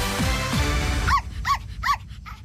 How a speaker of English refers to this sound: It's a dog, isn't it? Oh, I wonder if I can make it growl.